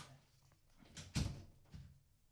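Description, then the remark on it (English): A few dull knocks on a door, irregularly spaced, with the middle one the loudest and sharpest, against a quiet background with no talking. “I'm knocking the door.”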